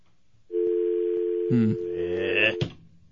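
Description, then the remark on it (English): A steady telephone dial tone hums continuously for about two seconds, joined partway through by a brief burst of muffled voice and a sharp click before it cuts off. “Oh, here she is on the phone.”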